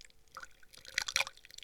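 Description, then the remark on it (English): A drink is poured badly into a tin, spilling over the person pouring. Liquid splashes and drips unevenly in a trickling pour, with scattered bright droplet hits building to a few louder splatters near the end. “This is quite possibly the worst pour I've ever seen in my life.”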